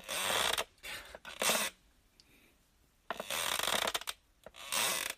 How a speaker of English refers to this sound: You could have just said, my chair's a little creaky.